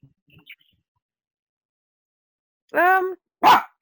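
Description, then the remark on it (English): A male dog barks twice in the background after a near-silent stretch, a drawn-out, tonal woof followed quickly by a sharper, rougher bark, both fairly loud. “My dog's saying hello.”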